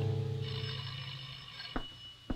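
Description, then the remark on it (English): A doorbell rings with a steady, bright high-pitched tone over a low droning hum, then two short sharp clicks sound near the end. No one speaks. “I'll answer the door, and I don't want to hear a sound out of you.”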